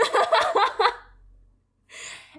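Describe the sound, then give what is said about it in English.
A voice mimics heavy, dramatic breathing like that in the anime Attack on Titan: a burst of ragged, panting breaths, a short silence, then one more airy exhale, fairly loud. “And lots of heavy breathing.”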